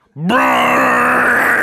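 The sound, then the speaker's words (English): A man's voice imitates the Inception movie-trailer horn blast: a low, buzzy, harmonic-rich drone that slides up briefly at the start, then holds loud and steady for over a second. “My heart right now is just making the Inception trailer sound.”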